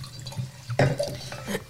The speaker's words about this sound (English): So shall I pour everyone a glass of Bocelli?